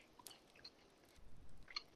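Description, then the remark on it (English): Quiet crunching of the crusty, buttered corner piece of a round bread loaf being chewed, with a few sharp crackles and a soft, irregular munching rhythm, no voices. “Listen to that crunch.”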